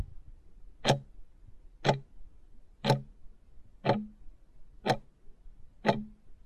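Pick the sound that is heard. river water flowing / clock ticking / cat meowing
clock ticking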